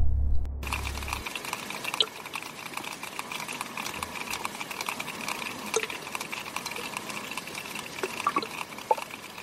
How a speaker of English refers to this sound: This enables them to get an imprint of what is around them without actually seeing anything. Here's an example of a sperm whale's echolocation.